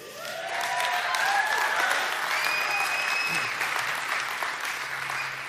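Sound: audience cheering and applauding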